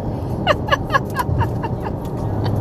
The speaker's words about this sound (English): So I'm in the car.